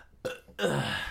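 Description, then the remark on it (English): A loud burp right into the microphone, starting with a short throaty croak and then a longer, rumbling belch that trails off, with no talking. “One of them was to stop burping into the mic, which he just did out of spite, by the way.”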